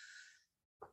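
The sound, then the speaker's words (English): A voice mimics a sneeze, "Kanchu": a drawn-out breathy hiss, a brief pause, then a sharp, loud burst, with no other talking. “Kanchu sounds like Gesundheit.”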